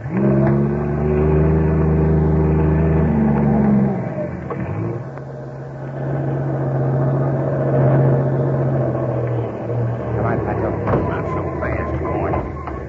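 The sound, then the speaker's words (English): A heavy trailer truck engine roars steadily as it climbs a steep highway at night, its deep drone shifting pitch as the gears change, loud throughout. “Suddenly, the silence of the night is broken by the roar of a trailer truck climbing the steep highway.”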